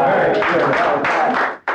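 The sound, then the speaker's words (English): A group of men in suits and children applauding after a spelling of potato in front of Vice President Quayle, a dense, steady patter of clapping mixed with murmuring voices that holds loud for over a second before briefly dropping away. “Various men in suits are applauding, as are the kids.”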